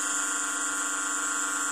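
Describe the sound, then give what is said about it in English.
A steady electronic buzz from a PEMF biohacking device hums without pause, a dense stack of even harmonics holding one pitch at a constant level, with no voices over it. “I can feel a vibrating throughout my body.”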